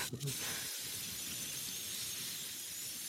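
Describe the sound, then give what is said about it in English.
A cat lets out a long, steady, breathy hiss that sounds almost like wind, holding fairly loud and unbroken for a few seconds after a brief soft knock at the start. “So is it windy in your room? Is yeah. The wind? Yeah. Yeah, it's the cat.”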